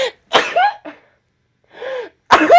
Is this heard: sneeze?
yes